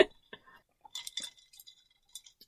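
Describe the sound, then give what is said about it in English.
Drinking glasses of iced mint tea mixed with raspberry cordial and lime juice clink together in a toast: a few bright chinks with a short ringing tone, scattered over a couple of seconds amid faint rustling and soft background murmur. “So cheers. Cheers.”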